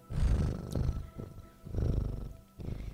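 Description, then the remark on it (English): A domestic cat named Moss purrs, a low, steady rumble swelling and easing in about four breath cycles, with no voices over it. “And I just pick up my cat and deposit it in her lap.”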